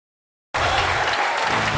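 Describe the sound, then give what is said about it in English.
At the stock exchange closing bell on a Friday afternoon, after half a second of silence, loud, dense applause and crowd noise erupt and continue steadily to the end, a broad wash of clapping with a low rumble beneath. “You just heard the bells.”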